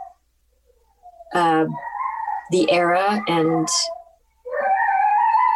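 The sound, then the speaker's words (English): A dog whines in high, drawn-out tones in the background, with a brief bit of speech mixed in and another long whimper rising near the end. “Is that a baby or a dog?”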